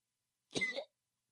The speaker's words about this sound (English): Yeah, cough like you mean it, bitch.